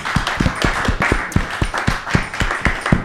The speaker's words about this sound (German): Ja, das ist eigentlich ein Applaus wert, finde ich, für dich schon mal.